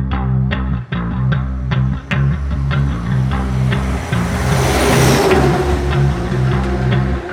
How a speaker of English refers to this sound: Just then, the sound of an engine roared from behind, leaving both men baffled.